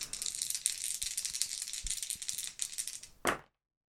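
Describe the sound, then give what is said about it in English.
Dice for a tabletop roleplaying game, one action die and two challenge dice rolled for a character's plus heart move, rattle and clatter steadily for about three seconds, with brief sharp knocks scattered through, ending in one loud clack before silence. “So Lucius is going to roll plus heart.”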